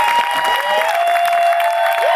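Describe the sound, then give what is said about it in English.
A live audience at the Dutch Hall claps and cheers steadily, a dense wash of applause with whoops and a sustained whistle-like tone riding on top, loud throughout. “Hey, hold on. Hot crowd.”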